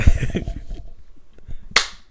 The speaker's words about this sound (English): Sing clap one more time.